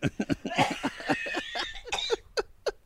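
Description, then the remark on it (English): A rapid run of short, harsh coughs, a dozen or so in quick succession, fairly loud, trailing off into a few separate hacking bursts at the end. “Y'all, I got to get, because I'm about to die of coughing.”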